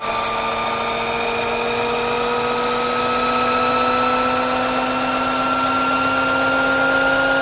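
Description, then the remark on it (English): A Harley LiveWire electric motorcycle whines: a steady, loud, high-pitched motor hum rich in overtones, its pitch slowly climbing as it accelerates without pause, with no voices. “Finally, we're going to hear the Harley Livewire electric motorcycle.”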